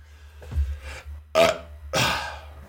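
A low, guttural burp rumbles out, followed by two short, breathy bursts of noise a moment apart; no talking.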